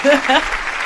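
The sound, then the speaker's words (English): A brief burst of clapping, a dense crackling wash that starts with a vocal cheer over it and fades slightly toward the end, lasting under a second. “We even got the applause.”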